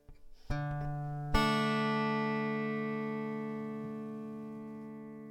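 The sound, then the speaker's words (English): A mountain dulcimer, also called an Appalachian dulcimer, is strummed twice, a soft chord followed by a brighter, fuller strum, its droning strings ringing on and slowly fading with no voices. “It's a mountain dulcimer, or an Appalachian dulcimer.”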